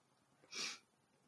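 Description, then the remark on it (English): A single quick, hissing sniffle through the nose, soft, lasting about a quarter second against an otherwise quiet background with no talking; the sniffling is caused by cats. “Sorry, I'm all like sniffly.”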